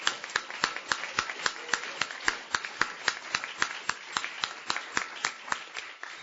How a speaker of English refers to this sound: there's probably several people that did a lot of work to make this happen, and it's usually thankless. So let's thank them. Can I get a round of applause for all the people that did this?